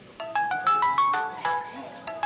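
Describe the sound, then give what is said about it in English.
A mobile phone ringtone plays a bright, rapid electronic melody of short repeating tones, steady, with faint background chatter underneath. “turn that phone off.”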